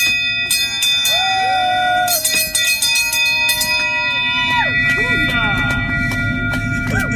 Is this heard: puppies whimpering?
no